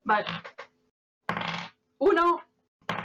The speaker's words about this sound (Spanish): Tira dos dados de 6